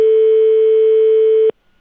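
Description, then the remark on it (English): A telephone ringing tone on an outgoing call to an apartment complex in Winter Park: one steady, buzzy mid-pitched tone holds evenly for about a second and a half, then cuts off abruptly into silence. No voices. “So we'll give them a quick buzz.”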